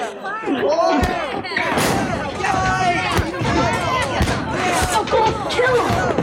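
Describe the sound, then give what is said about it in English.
A dense, noisy crowd: many overlapping voices shouting and chattering at once, loud, with occasional sharp thumps and bangs cutting through the steady din. “Like the crowd sounds.”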